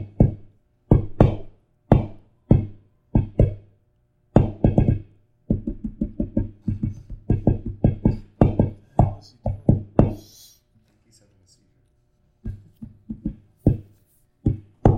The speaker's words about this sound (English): No, no, he's knocking on the door very distinctly with his knocks.